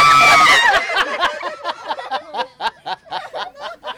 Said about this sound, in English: Those were eels. Well, technically, those were humans who were doing the screaming. Eels are silent. But they can be pretty strange when a handful of a couple of hundred of them are placed in your hands and start streaming through your fingertips.